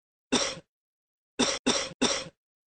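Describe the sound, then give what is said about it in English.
A single sharp cough given on request, a short pause, then three more in quick succession. The coughs are fairly loud, with no talking around them. “All right, cough, please. Cough again.”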